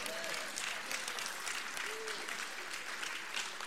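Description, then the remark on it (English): Steady audience applause fills the whole stretch, a dense, even wash of many hands clapping at moderate loudness, with a couple of faint voice-like tones briefly surfacing beneath it. “I'm glad you applauded that bit because that is so true.”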